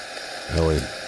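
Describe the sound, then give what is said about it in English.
Live underwater hydrophone noise from the ocean: a steady wash of hissing, bubbling water, with a brief louder tonal swell rising and fading in the middle. “You just listen to the ocean. Orca sound is just the water.”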